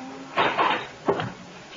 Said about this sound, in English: There's nobody aboard this tub. Doesn't seem to be. But let's not take any chances. Stand back while I open the cabin door.